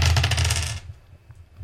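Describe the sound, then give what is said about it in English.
A handful of dice clatter and rattle together in a dense, busy burst lasting under a second, fairly loud, as a player rolls a lot of dice, then stop abruptly, leaving faint background noise. “He's rolling a lot of dice.”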